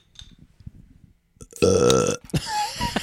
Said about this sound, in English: I stood up and I had a burp for a second.